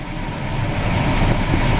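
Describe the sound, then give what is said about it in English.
Steady street traffic in Manhattan, New York: a dense, continuous rumble of cars and larger vehicles with a broad hiss over it, holding at a fairly even, moderately loud level. No one speaks. “New York traffic, isn't it? Manhattan traffic.”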